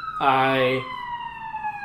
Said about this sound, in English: There's so many sirens today. What is this?